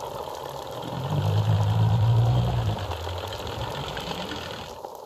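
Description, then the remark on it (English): Underwater noise in Wellington Harbour: a dense, low mechanical drone like a boat engine swells for a couple of seconds and then eases back, over a steady layer of grainy hiss. No voices. “This layer of noise weaves together and makes a net that smothers natural noise.”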